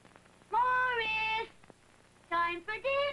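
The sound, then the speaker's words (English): Someone imitates a cat meowing: one long, drawn-out meow, a pause, then a couple of shorter meows in quick succession, fairly loud. “Oh, it's a cat.”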